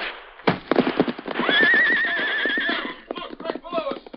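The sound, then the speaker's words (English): Silver, the Lone Ranger's great white stallion, lets out a long, loud, wavering whinny while hooves clatter in a quick, steady gallop rhythm, the hoofbeats continuing after the neigh fades. “Knowing that Silver, his great white stallion, possessed instincts that were infallible in emergency, the Lone Ranger swerved suddenly and leaped for the horse's back.”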